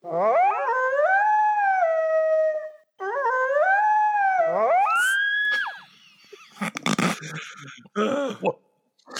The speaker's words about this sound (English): It's a combination of sounds, including a Tasmanian devil recorded for Willow with dog and coyote yelps from the Skywalker library.